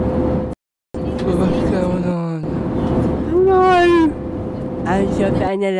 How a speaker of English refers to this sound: We were on an airplane heading to New Zealand when the engine started making a funny noise.